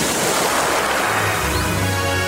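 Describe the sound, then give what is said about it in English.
Broad, steady roar of ocean waves breaking on a shore, loud, with a low rumble swelling toward the end and no voices. “Wow, there's a whole new ocean.”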